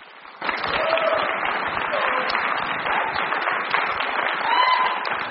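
An audience breaks into sustained applause for a guest who has just been introduced, a dense wash of many hands clapping that starts abruptly and holds steady and loud throughout, with faint whoops or voices rising through it.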